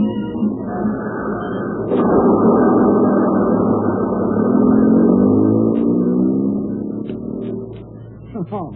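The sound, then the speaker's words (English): A bus engine idles at a station with a steady, heavy rumble that swells louder through the middle, then eases off toward the end, with a few faint clicks and clanks. “He didn't get off that bus.”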